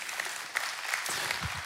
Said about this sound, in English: I appreciate the clap.